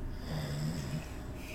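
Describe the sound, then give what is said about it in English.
A voice imitates the heavy snoring of a sleeping character, one long, rough, rattling inhale held for about a second, fairly loud, with no other talk. “Snoring even harder if possible than he normally does.”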